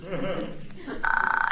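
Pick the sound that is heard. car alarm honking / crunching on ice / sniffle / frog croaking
frog croaking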